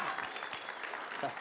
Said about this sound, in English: You guys win the award for a round of applause. You beat the first hour handily. I appreciate that.